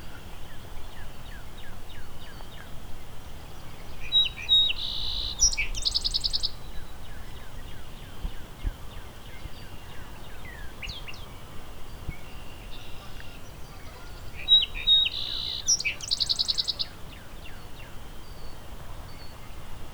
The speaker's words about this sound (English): So here's a nice loud song sparrow.